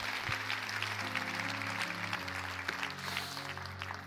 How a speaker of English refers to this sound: Clap your hands for the word tonight. Clap your hands for the word tonight. Clap your hands.